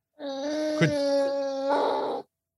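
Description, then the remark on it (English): A dog lets out a sustained, high-pitched whimpering howl lasting about two seconds, fairly loud, wavering slightly in pitch with no talking over it. “The dog doesn't want to hear any about it.”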